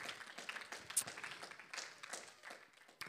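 An audience claps their hands in a soft, dense patter of many overlapping claps, steady throughout, with a couple of sharper claps standing out.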